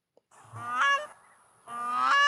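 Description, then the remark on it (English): Two loud honking calls from a grey crowned crane, Uganda's national bird, each a rich harmonic blare rising in intensity, separated by a brief pause, with no talking. “The gray crested crane, Uganda's national bird, is facing a severe threat in Kigezi sub-region.”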